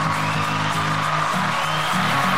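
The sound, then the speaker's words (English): A small group claps and cheers steadily for a couple of seconds to welcome a guest, sustained whoops and hollers riding over dense, continuous clapping at a loud, even level. “that is just a small group of people I keep chained up under my desk just to applaud you.”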